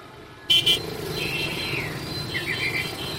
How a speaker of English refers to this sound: Saigon, a tropical, restless city. Mopeds define the street atmosphere. Saigon's 5 million residents own 1.5 million mopeds.